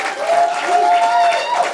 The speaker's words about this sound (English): All right. It's okay. Don't clap for her too much.